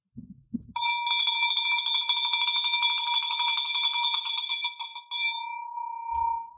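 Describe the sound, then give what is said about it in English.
A bell is rung in celebration, ringing loudly and rapidly for several seconds, its clapper striking in a fast continuous shake, then stops and the bright metallic tone rings out and fades, with a brief thump at the end. “That's how you ring a bell.”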